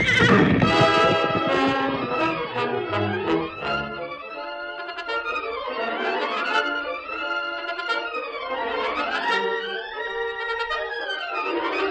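A horse whinnies loudly and repeatedly, its cries sliding up and down in pitch, while heavy galloping hoofbeats thud underneath during the first few seconds, with no voices; the horse is breaking loose from its rider in a Lone Ranger radio drama.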